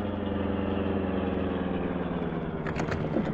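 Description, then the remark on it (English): A loud car engine hums steadily at a low, throbbing pitch, easing off as the car slows to a stop, with a few brief rattling knocks near the end. No one speaks. “Well, run right up beside their car. Slow down for me to jump off.”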